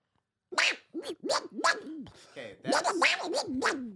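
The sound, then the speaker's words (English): A person imitates a duck, letting out a quick run of about eight or nine raspy, nasal quacks with a short pause midway. The quacks are loud and stand alone without other talk. “Okay, I need you to understand that ducks don't naturally sound like they that.”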